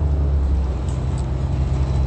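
Steady low rumble inside a bus in motion going eastbound on Foothill Boulevard in Rancho Cucamonga, the engine droning loud and constant with road noise throughout, no voices, just the continuous hum of travel.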